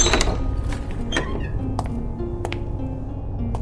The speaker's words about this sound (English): After going down a series of crumbling staircases, I come to a small wooden door. Above the door is a blinking neon sign depicting a giant squid fighting a sperm whale. The sign reads, "The Salty Squid." I push the door open and enter the pub.